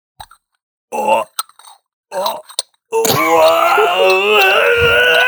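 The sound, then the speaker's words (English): A voice imitates a skyscraper creaking: two short groaning bursts, then a long, loud, strained moan with wavering pitch that stretches for over two seconds. “A creaking of a skyscraper.”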